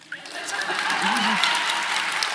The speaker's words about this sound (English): I love that. Clap for it.